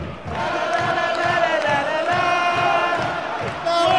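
A large football stadium crowd of Watford supporters chants in unison, a sustained roar of many voices, with steady rhythmic clapping pulsing underneath throughout and a brief swell of cheering near the end.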